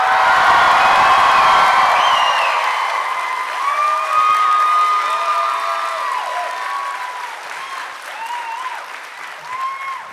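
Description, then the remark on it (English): A large audience roars with sustained cheering, high-pitched screams and whoops over steady applause as Felicia Day is brought up, loud at first, then easing slightly while shrieks keep rising above the clapping. “You guys screech really well together. That's like, good screaming.”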